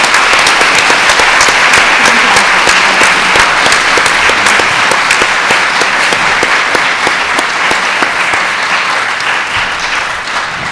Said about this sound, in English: Well, before we begin, can we all just stop and give a round of applause to four fantastic ladies?